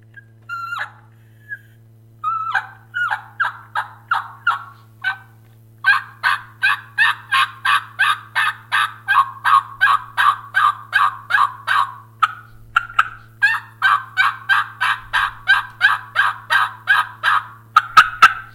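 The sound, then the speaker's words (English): A mouth call imitates a turkey, starting with a few scattered clucks and then running into long, rapid strings of loud yelps with brief pauses between bursts, over a low steady hum. “And then, of course, you're more, obviously you want to learn to yelp, and any yelp with a mouth call is a high note and then drops into a back end.”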